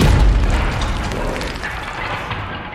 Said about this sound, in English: And you hear another large crash against the gate.